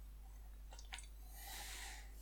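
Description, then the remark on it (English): A quiet sip of water: a couple of small wet mouth clicks followed by a soft, airy slurp and swallow, with no talking. “Little drink of water.”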